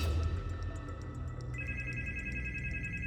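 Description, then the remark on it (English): A home telephone rings at around 10:30 p.m. with a steady, rapid bell-like trill. Bright tonal bands pulse evenly throughout. It is moderately loud, with no talking. “At around 10:30 p.m. on May 18th, the phone rang at Evelyn Miller's home.”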